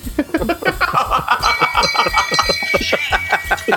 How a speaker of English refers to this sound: You got the shame bell. Shame.